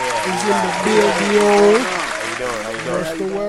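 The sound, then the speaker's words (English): A steady, loud burst of applause fills a few seconds, with voices calling out and talking over the clapping the whole time. “We got to clap it up.”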